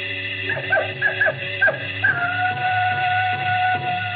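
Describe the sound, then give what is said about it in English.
A jackal calls from far off, a burst of short, rising yelps followed by one long, thin, sustained howl, heard faintly over a steady low background hum. “The howl of the jackal in the distance.”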